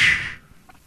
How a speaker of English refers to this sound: Completely exhale through your mouth, making a whoosh sound. Whoosh.